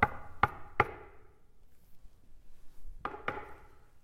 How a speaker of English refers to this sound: You can almost just like hear it, right? You can hear the knock on the door.